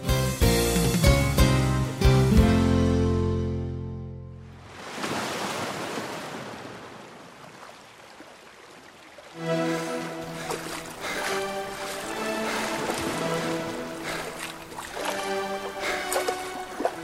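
sea waves

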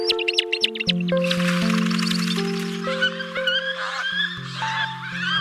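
bird calls

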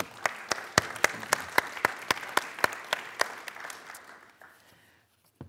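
audience round of applause

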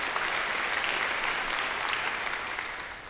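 audience applause

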